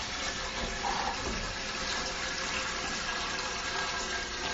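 A steady, continuous rush of 1 1/4 gallons of water pouring into an enamel brew pot for brewing, fairly loud, holding an even hiss for several seconds with no voices over it.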